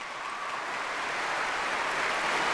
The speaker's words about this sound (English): Once you hear the applause, darling, that is how you know that your time is up. Let me give you the applause right now so you know what it sounds like. Here we go.